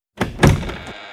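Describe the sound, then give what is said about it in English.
An office door swings open with a wooden thunk and a brief rattling creak, then settles into quiet room tone. “The door swings open, and a tiny gal, who used to be a looker, shuffles in”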